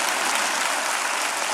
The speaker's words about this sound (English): Clap your hands and believe God for something great.